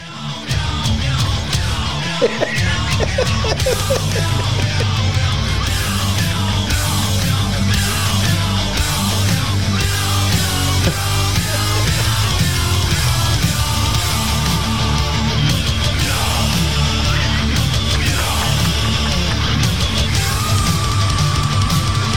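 A Meow Mix cat food advertising jingle performed as loud, dense, distorted music, with harsh yelled vocals over a steady rumbling low end and busy, continuous instrumentation from start to finish.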